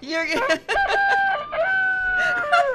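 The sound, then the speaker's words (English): A toy chicken hanging on a wall lets out a loud mechanical rooster crow, several drawn-out, buzzy cock-a-doodle-doo notes in a row, heard alone without any talking. “And a chicken hanging on the wall.”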